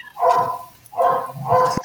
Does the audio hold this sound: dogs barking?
yes